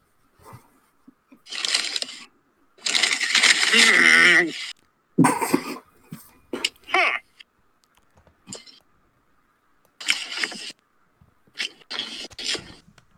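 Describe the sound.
Someone chews a bite of a McDonald's pancake-like food in loud, irregular bursts of wet, crunchy noise separated by short pauses, with a drawn-out voiced murmur partway through.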